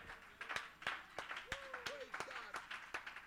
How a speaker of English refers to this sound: Somebody ought to clap your hands and give God a shout of victory and a shout of praise.